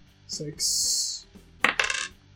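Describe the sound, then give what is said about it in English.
Dice are rolled for damage during a tabletop game, rattling and tumbling across a hard table in a couple of bright, clattering bursts, fairly loud, with a quick series of clicks as they settle. No one speaks. “Roll your damage.”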